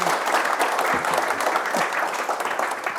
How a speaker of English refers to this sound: Let's give them a round of applause just to get started.